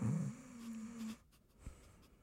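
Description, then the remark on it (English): A voice imitates a light snore: one soft, low, rumbling breath lasting about a second, fairly quiet, then trailing off into near silence. “You snore? You definitely snore.”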